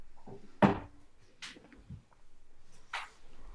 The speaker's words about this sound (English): I'll be right back. I'm going to shut my door. My cat opened it. Hold on 1 second.